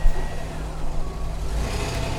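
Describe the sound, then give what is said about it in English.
A Hemi car engine churns with a steady low rumble as it tries to start again after stalling, a faint higher whine riding over it for about two seconds, with no one speaking. “Let me try. Get going again.”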